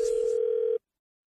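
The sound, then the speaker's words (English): A steady, low-pitched telephone line tone hums loudly for just under a second as a call connects, then cuts off abruptly into silence. No voices accompany it. “You'll find out how it goes in your phone tap right now. It's another phone tap.”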